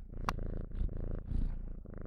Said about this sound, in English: Do you guys mind that my cat is around? I can't do anything. I'm not going to lock her out because she'll cry. So better just to have her around and occasionally purring into the microphone.